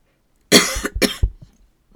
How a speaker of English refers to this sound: Excuse the cough.